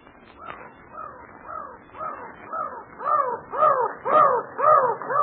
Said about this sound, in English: But I wish those seagulls wouldn't fly so close to me. They mean seagulls, miss. Them's mountain crows. Well, they're awful mad. Maybe they think we want to steal their eggs.